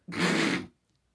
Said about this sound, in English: That was a cough. I cough.